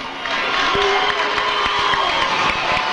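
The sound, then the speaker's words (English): A loud, sustained roar of the Beaver Dam basketball bench and crowd cheering after a spinning basket off the glass and a foul call, a dense wash of voices that stays steady throughout with excited shouts, whoops, sharp yells and thumps punctuating it. “Boy, the Beaver Dam bench was going crazy over that.”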